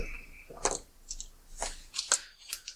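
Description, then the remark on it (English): Dice being gathered up by hand, a handful of small, sharp plastic clicks and clatters scattered irregularly over a few seconds, fairly quiet, with no voices. “Sorry, as I gather my dice.”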